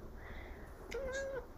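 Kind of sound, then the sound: animal, cat meowing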